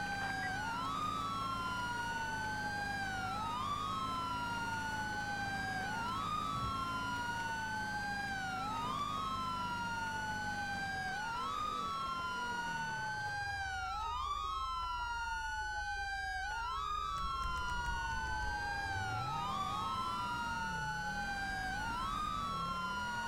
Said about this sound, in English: Why is my controller not letting me change the siren tone?